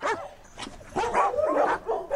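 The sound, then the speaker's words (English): Several dogs bark and yip in quick, overlapping bursts, moderately loud, with some higher whiny tones mixed in and no talking. “Ready? Sit. Good dogs.”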